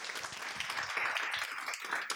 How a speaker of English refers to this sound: Please, round of applause for Andrew.